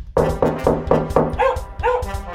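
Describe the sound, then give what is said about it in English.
A dog, Toodles, barks at someone at the door in a rapid, steady series of about five sharp woofs, then shifts into two or three higher, whining yelps. The barking is loud and insistent, with no voices. “Yes, yes, Toodles, I know. Someone's at the door.”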